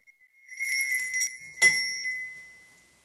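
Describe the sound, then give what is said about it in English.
A bell rings with a bright, high metallic tone, jangling steadily for about a second before one sharper strike rings out and slowly fades away, with no voices. “Who's ringing the bell?”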